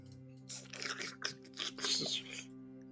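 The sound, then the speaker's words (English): A voice imitates wet slurping noises: several bursty sucking sounds run together over about two seconds, with a steady low hum in the background. “Just some slurping sounds.”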